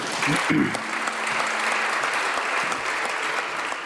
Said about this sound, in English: Mario Draghi tells the Italian parliament that Zelensky missed the call. His voice breaks as he says it. Ma non è stato possibile poi far la telefonata. To fill the silence, MPs start clapping in solidarity.